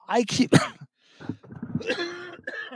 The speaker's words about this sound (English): excuse me. There we go. Cough on that mic.